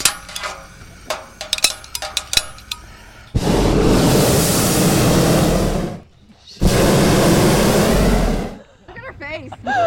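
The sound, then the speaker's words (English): Hot air balloon pilot Marilyn Wallace warms up her burner for a flight: after some metallic clicks and clanks, its 10-foot flame fires twice in loud, steady roaring blasts of about two to three seconds each, with a short gap between; the balloon weighs 2.5 tons. “Hot air balloon pilot Marilyn Wallace is warming up her burner for today's flight.”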